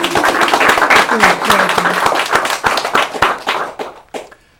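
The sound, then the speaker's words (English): A small group applauds for the Massachusetts writer Mary Oliver, with dense, steady clapping that thins into a few scattered claps before dying out. Some faint voices mingle with the clapping early on. “Should we have an applause for Mary Oliver?”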